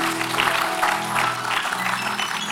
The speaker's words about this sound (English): Yes, you want to clap? Let's clap for God.